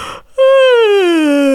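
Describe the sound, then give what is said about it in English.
A person yawns: a short breathy intake, then a loud, sustained voiced sigh that slides steadily downward in pitch and trails off, with no talking. “It stretches out your pharynx, and you can feel it if you do a yawn.”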